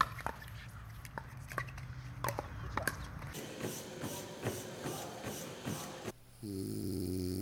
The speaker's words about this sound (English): Wait, was that you snoring? Maybe.